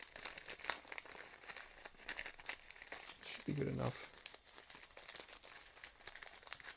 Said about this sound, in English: So it's a separate piece of paper. Just stuffed in. So a piece of paper.